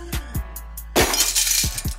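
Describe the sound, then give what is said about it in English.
Thin glass cracks with a few sharp ticks, then shatters in a bright, crunching burst with fragments clattering. No one speaks. “Man, that's thin ass glass.”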